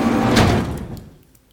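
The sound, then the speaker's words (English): A heavy pressure door slides open with a broad, loud whoosh and rumbling grind, peaking early and then trailing off into quiet over about a second and a half. “The pressure door just opened.”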